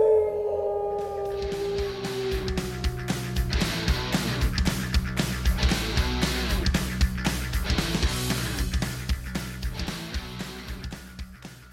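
A single loud wolf howl on a clear, windless night under a crescent moon, holding a long, slowly falling tone for a second or so before rhythmic, percussive music with a steady beat takes over for the rest.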